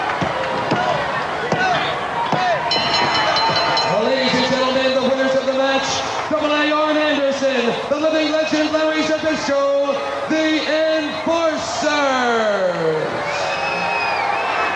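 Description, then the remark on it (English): A large wrestling crowd at ringside lets out loud, sustained oohs and aahs in reaction to a spine buster in the ring, swelling and wavering in pitch and ending with a long descending groan, after a few dull thuds at the start. “Ooh, and ahs come from the crowd here.”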